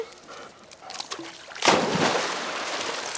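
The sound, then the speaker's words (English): A dog named Harley leaps into a backyard pool in Tucson to get a thrown ball, with one sudden, loud splash after a quiet lead-in, followed by sloshing, churning water that fades slowly for over a second. “I said that he was going to jump in to get the ball, and he likes to jump in and get the ball.”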